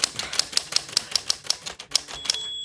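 Steady, brisk typewriter keystrokes clack along in a regular rhythm, crisp, ending with a quick flurry and a brief ringing tone as the carriage bell sounds.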